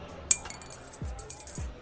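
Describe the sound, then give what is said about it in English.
A single bright clink of glasses in a toast rings out sharply near the start, followed by a couple of soft low thuds and faint background rustling. “Ah, cheers to all of you, my unlucky lounge rats, as we open up our 6 packs here for our MTGA practice sealed pool.”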